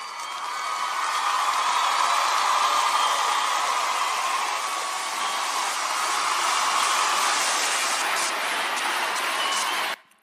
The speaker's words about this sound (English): A round of applause.